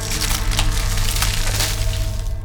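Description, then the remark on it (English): Creaking and splintering as Odin's stiff joints twist themselves free of a crusted throne, like wooden joints cracking loose, with bursts of brittle crackle over a steady low rumble. No one speaks. “His creaking joints twisted themselves free of the crusted throne.”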